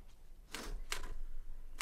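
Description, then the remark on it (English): Typewriter keys on Lady Gregory's brand new typewriter clack three times at uneven intervals as she types out a manifesto with Yeats, sharp mechanical strikes standing out over a low, steady background hum, with no voices present. “Lady Gregory sat down at her old typewriter.”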